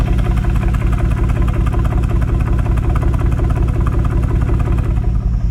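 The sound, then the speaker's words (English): An old-school cross-plane V8 engine in a car idles steadily and loudly, its deep, lumpy grumble pulsing in an uneven loping rhythm at constant loudness, with no voices present. “First of all, this is like old school cross plane V8 grumble, just idling.”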